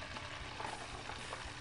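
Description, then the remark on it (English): Chicken nuggets frying in hot oil: a steady, dense hiss with a fine crackling texture that stays even throughout, fairly quiet, with no voices. “So we're gonna let those cook up in the oil.”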